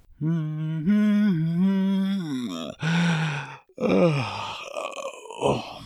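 A man hums a short tune in a low voice, stepping between a few notes, then lets out a long, drawn-out, breathy yawn that trails off. Close and fairly loud.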